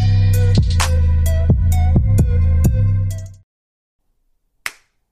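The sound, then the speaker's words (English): A steady tonal drone with regular sharp hits plays for a few seconds and cuts out. After a moment of silence, a single crisp hand clap, made to sync the audio, rings out loud and alone. “First clap sync.”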